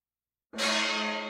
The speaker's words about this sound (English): What just happened? We got gonged for some reason. Is it about the train? It's a nice gong, but I got to set it up in a better place where you can hit it hard and we all can hear it.